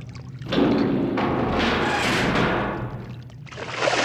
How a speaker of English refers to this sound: Luke goes down into the water, and we're left with just the sound of sewage.